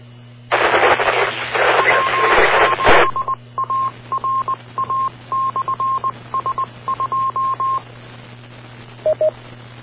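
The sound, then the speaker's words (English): A weak, rough incoming transmission from a station calling into an amateur (ham) radio net: a loud burst of hissing static, then choppy, broken fragments carrying a steady mid-pitched tone that cuts in and out, over a low constant hum. “Station calling, you're a little bit rough.”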